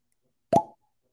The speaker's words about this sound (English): I prepped the bottle for opening. Ready for the double cork pop? Ready? One, two, three.